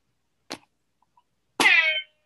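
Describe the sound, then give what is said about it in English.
A brief click, then a loud, harsh buzzer blast lasting about half a second from a brand-new buzzer noisemaker, raspy and rich in overtones, sounding on its own with no talking. “No, I have a good bell, but it's brand, that the buzzer's brand new, so I felt like I needed to use it a lot today.”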